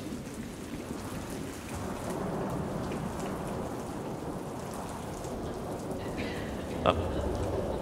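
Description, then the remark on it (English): Steady rain pours outside with a continuous hiss, heard from a living room, while low rumbling thunder rolls underneath and a brief sharper crack stands out near the end. “Sounds like maybe a little storm's brewing outside.”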